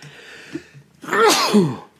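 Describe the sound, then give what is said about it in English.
A single loud sneeze bursts out after a brief quiet lead-in, with a sharp breathy onset and a voiced tail that drops in pitch. “Bless you. Excuse me.”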